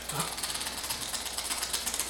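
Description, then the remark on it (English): A dense, rapid clicking like a creature's mandibles chattering, dry and ratchet-like, runs steadily for about two seconds at moderate loudness with no voices over it. “Definitely not with the mandible clicking sounds.”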